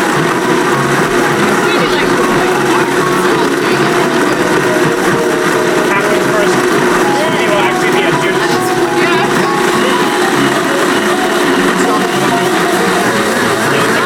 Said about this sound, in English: So we're going to do our second blend here.